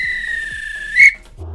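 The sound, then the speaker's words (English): A referee's whistle blows in one long, shrill, steady blast that swells louder just before cutting off, with faint rhythmic thumps underneath and a low rumble afterward. “If this were a real bit of extra time, this is when the ref blew the whistle because it's finished.”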